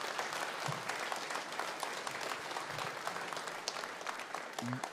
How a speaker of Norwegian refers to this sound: hele den gjengen som her framme, de gjør en kjempejobb og står på hvert møte. Må gi deg en skikkelig applaus her.